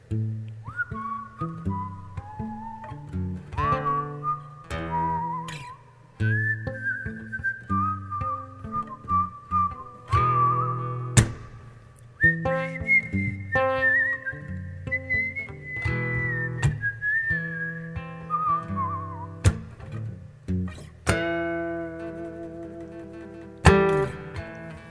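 A song with a melody carried by steady, high whistling, sliding between held notes over a low strummed or plucked instrumental accompaniment, moderately loud and continuous for the whole stretch, with no talking.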